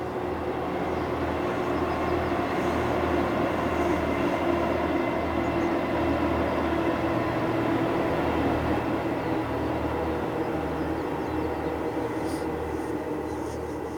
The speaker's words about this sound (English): Romantic as I imagined it, you know, because I had a vision of a great steam engine, you know, with plumes of steam coming out. This is a little diesel carriage going across, but you can imagine what it would have been like in Victorian times